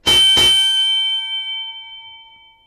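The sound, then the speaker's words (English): A bell is struck twice in quick succession, loudly, then left to ring out with a long, bright, slowly fading metallic tone. No voices are heard. “Go over there and ring the bell.”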